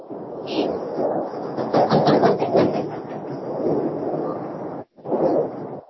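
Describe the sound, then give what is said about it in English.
A train rumbles by overhead on a train trestle on Atlantic, a loud, steady roar with a burst of rhythmic metallic clatter in the middle, briefly cutting out before the rumble returns. “Yo, I was crossing under the train trestle on Atlantic.”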